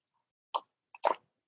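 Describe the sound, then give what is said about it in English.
A quick sip of coffee from a branded coffee mug: a short wet slurp, a brief pause, then a tiny click and a fuller gulping burst, all fairly quiet with no talking. “Sorry, let me take another sip.”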